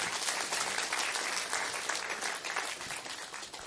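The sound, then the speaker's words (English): A large crowd applauds steadily in a hand clap of praise for a distinguished guest, dense overlapping claps filling the whole stretch at an even, sustained loudness without any voices standing out. “Let's have another hand clap of praise for our distinguished guest,”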